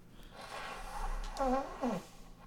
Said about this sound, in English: He's blowing his nose.